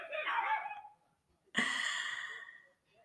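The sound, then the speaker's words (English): Dogs barking outdoors: two drawn-out, harmonic bark-like cries, each lasting about a second and separated by a short pause, fairly loud with no talking over them. “Oh, there's some dogs getting after it out there.”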